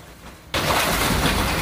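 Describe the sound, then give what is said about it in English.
After a brief quiet moment, a loud, dense crash erupts abruptly as Jeffrey Epstein's Palm Beach mansion is demolished, a continuous roar of crumbling and shattering debris that holds steady to the end. “the demolition of Jeffrey Epstein's Palm Beach home.”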